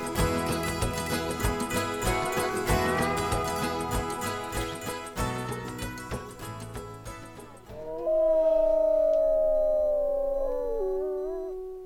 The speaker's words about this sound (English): That's just a wolf howling. He's not going out to get you or anything.